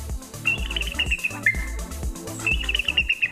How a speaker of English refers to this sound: Was it eagle? An eagle.